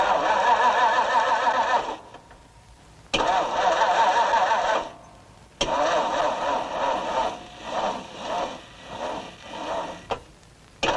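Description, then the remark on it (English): The engine of a used car with only 27,000 miles, overhauled the day before, turns over and catches in repeated bursts, cranking and revving loudly, cutting out between attempts before settling into a rising and falling rumble. “Go ahead, kick her over.”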